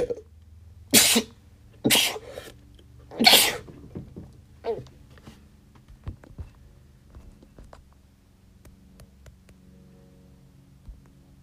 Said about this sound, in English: Excuse me why I had to have a fit of freaking sneezing, ladies and gentlemen.